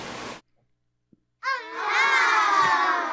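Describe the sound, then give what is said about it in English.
A burst of noise, a short silence, then a loud crowd of children cheering and shouting together, sustained, with bright overlapping high voices; a sound effect inserted into a video. “The cat jumped up on the windowsill and he inserted a sound of children cheering.”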